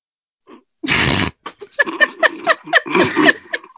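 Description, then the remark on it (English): Dogs snuffle and grunt: a sharp, sneezy snort, then a quick run of short snuffling grunts and squeaky snorts tumbling over one another, with no talking. “You and these three and the dogs? The dogs are integral.”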